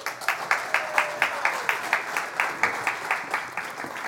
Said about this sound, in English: Hey, can we do one thing and give those kiddos another big applause?